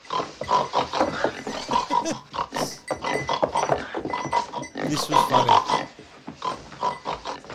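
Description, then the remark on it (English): A person makes a run of repeated, throaty pig-like grunts and snorts, an imitation of a pig, with short bits of talking mixed in between. “She grunts and turns to him and grunts to him. With a grunty pig face making the noise.”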